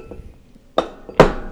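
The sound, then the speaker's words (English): Two bright glasses clink together in a toast, one after another about half a second apart, the second a bit louder, each ringing briefly against a quiet background. “I'll drink to that, boy.”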